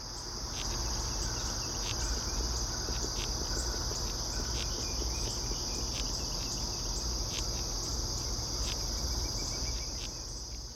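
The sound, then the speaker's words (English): A cerambycid beetle larva chewing wood under bark: a dense, continuous crackle of tiny irregular clicks and scrapes, steady throughout, with a thin high whine running over it and no voices. “This is the larva of a cerambycid beetle, chewing away at the wood underneath the bark.”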